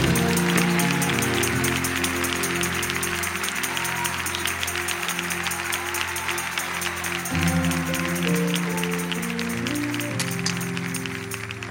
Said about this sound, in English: And so that God may know you're thankful for him, stand up, clap your hands, and praise God as Pastor Donnie McClurkin comes to share the word of the Lord.